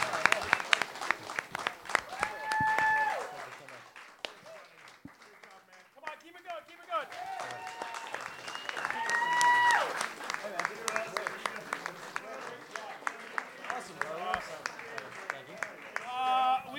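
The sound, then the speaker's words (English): An audience applauds steadily for about seventeen seconds for guest Rob Morrow, a dense patter of many hands with whoops and shouted cheers rising over it, swelling midway and continuing strongly to the end. “Rob Morrow, big applause. Come on, keep it going.”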